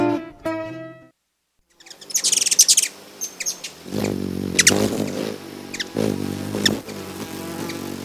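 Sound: hummingbird chirping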